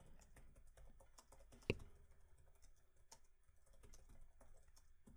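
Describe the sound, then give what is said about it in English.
Rapid, irregular tapping of keys on a computer keyboard, a steady patter of soft clicks with one sharper, louder keystroke early on, fairly quiet, with no voices. “You hear me typing away over here?”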